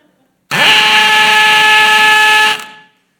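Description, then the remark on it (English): A hammer drill in hammer drill mode starts abruptly, spins up and grinds loudly and steadily into brick for about two seconds, a harsh buzzing whine, then cuts off and winds down quickly. No voices. “I just clicked into hammer drill mode.”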